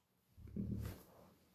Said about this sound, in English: Thank you, Logan. I don't know if the viewers heard that or on me, but our dog, Logan, my dog, snorted.